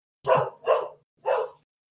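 A dog barks three times, two quick barks close together followed by a third after a short pause, loud with no talking.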